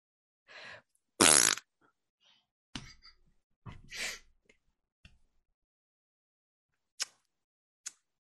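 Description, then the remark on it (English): A person makes a series of mouth fart noises, short sputtering raspberries in irregular bursts with pauses between, fairly loud, ending with a couple of brief clicks. “Just making fart noises.”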